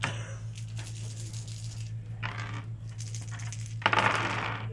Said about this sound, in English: Oh, and a dice was just flipped. So that dice, that purple, stays there.